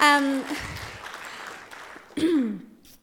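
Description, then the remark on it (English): An audience breaks into steady, rustling applause for the Word of God for a couple of seconds, framed by a sustained voiced tone at the start and a brief rising vocal cry near the end. “Yeah, give the Word of God a round of applause.”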